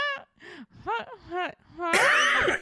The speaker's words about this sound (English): That was me. I had to cough and I tried not to.